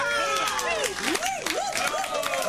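An audience bursts into loud applause and cheering, with a dense patter of clapping running throughout and rising, wavering whoops and shouts sweeping up and down over it.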